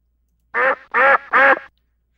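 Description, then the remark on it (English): Three loud, raspy duck quacks in quick succession, evenly spaced, each a short nasal burst with no other sounds around them. “And oh my God, the ducks!”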